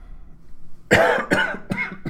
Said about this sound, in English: I'm sorry, I have a bit of a cold and a cough there.